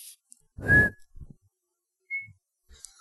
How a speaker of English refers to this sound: You guys are cool so whistles. Harmonious too. Yeah, similar whistles.